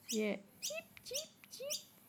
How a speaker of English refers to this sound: Like an annoying bird. Yeah, that's a baby bird, I reckon. Wanting to be fed. Wanting to be heard.